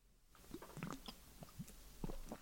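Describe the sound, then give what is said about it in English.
Wet mouth sounds of someone sipping beer from a bottle: a few short slurps and swallows at an uneven pace, with no talking. “The original idea came from, so you have to take a sip first.”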